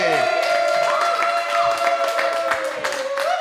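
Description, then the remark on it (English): An audience at the Laugh Factory in Chicago applauds steadily as a comedian is introduced, a dense wash of clapping with high whoops and sustained cheering voices riding over it, staying loud for the whole few seconds. “Get your get a round of applause going right now”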